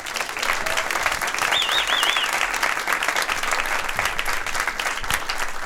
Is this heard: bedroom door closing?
no